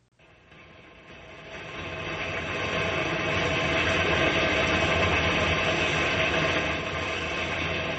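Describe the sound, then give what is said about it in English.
A steady, rumbling old train engine clatters along the rails in a rainstorm, building up from near silence over the first couple of seconds and then holding a loud, continuous mechanical roar with no voices. “We're just a couple of guys plunking along in an old engine in a rainstorm.”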